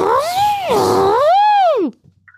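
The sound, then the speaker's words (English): A voice imitates a revving chainsaw with a loud, whining tone that swoops up and down in pitch twice over about two seconds, then cuts off abruptly. “Sounds like a little hookabout chainsaw.”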